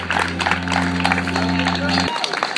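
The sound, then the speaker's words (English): A crowd claps and cheers in sustained applause for speaker Reverend Hagler at the May Day Rally, March and Festival for International Workers' Day in Washington, D.C., on May 1, 2018. The applause is dense and steady, with a low humming drone underneath that cuts off abruptly near the end. “One more round of applause for him.”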